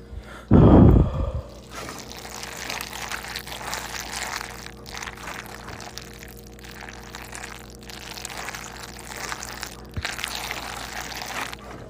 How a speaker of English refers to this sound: I'm walking over to the sink to fill up my water bottle.